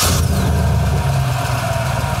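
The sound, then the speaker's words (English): A stock (unmodified) V8 car exhaust idles steadily, a low, even rumble with a faint rattly edge and no speech over it. “That's stock? This is stock. Sounds rattly and smooth and not appealing.”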